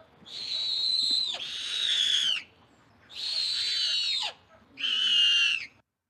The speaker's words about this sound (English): I'm going to play you 3 clips of owls